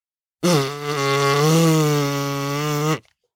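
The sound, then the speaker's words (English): A long, low, droning honk with a steady buzzy tone, held for about two and a half seconds before cutting off abruptly: a person's vocal imitation of a Parasaurolophus (hadrosaur) call. “Well, those noises are maybe what the hadrosaurs sounded like.”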